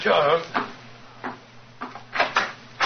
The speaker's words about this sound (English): Mrs. Hudson's opening the door to him now.